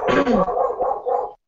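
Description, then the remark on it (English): A dog lets out a quick run of three or four barks, fairly loud, each blending into the next, with no talking over them. “There is a dog. The dog agrees with you.”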